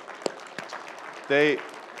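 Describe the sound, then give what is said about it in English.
An audience claps for its church leaders in a steady, diffuse patter with a couple of sharper slaps, and a brief high voiced whoop or cheer rises over it near the end. “And what they, yeah, let's clap for them.”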